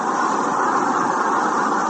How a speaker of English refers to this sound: And the roar of the crowd.